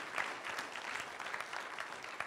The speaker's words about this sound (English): I think that deserves right now one more good hand clap for our Lord and Savior Jesus, right?